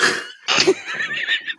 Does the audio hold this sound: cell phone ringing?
no